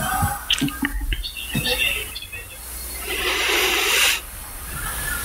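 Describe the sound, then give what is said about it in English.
A brontosaurus roar sound effect from a filmed scene, partly built from a Tyrannosaurus rex roar: shrill, whinny-like cries and rumbling give way to a loud, raspy, hissing roar that swells for about a second before cutting off sharply. “And just even the brontosaur roar in this is kind of scary.”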